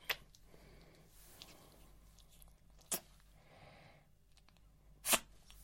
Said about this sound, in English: Yeah, thanks for sneezing in my face. Lovely.